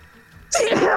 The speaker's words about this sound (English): Oops. Bless you.